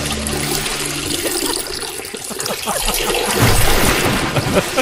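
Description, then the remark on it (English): A loud, torrential stream of urine splashing continuously and heavily for about five seconds, a steady gushing pour that swells slightly toward the end, alone without any talking. “Wow, that's torrential.”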